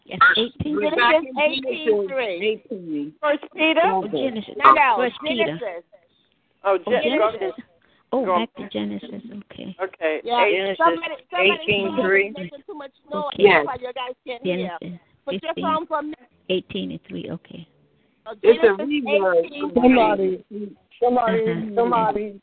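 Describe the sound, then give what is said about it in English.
Muffled, tinny voices come through a telephone line on speakerphone, talking continuously in short bursts with a hollow, echoing quality and brief pauses between phrases. “Somebody has a phone on speakerphone. If you take it off speakerphone, the echo will go away.”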